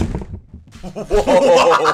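A few dull, low thuds of knocking on a table, followed by a louder, sustained rumbling clatter that fills the rest of the moment.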